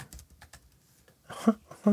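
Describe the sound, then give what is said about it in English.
A quick series of light, crisp computer keyboard or mouse clicks while going to the Drafts app by Agile Tortoise, with a couple of louder taps near the end and faint voice-like murmurs in between. “Okay, I'm clicking.”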